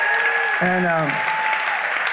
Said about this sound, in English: And my wife's sitting here tonight. Give him a big, big clap for my wife